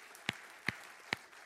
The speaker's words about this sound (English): Before we go any further in this service this morning, can we just give the Lord a hand clap of praise and give thanks to him?